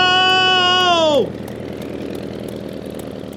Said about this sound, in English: And my brave brother and partner, Orville, is piloting the first manned airplane flight ever in the Wright Flyer number 1. Orville, are you ready? Ready! Fire up the engine! The plane is starting to move. Here we go!